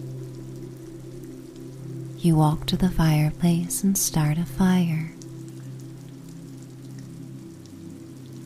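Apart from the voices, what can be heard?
rain pattering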